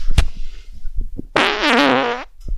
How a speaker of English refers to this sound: And his farts. I'm scared to put this mic close to my face now, because that sounded like a follow through, huh?